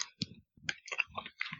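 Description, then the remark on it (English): Wet chewing with a full mouth: irregular smacks and soft clicks in quick bursts, separated by brief pauses, fairly quiet with no talking. “I hear you with your mouth full and gross, but I don't hear you the act of eating.”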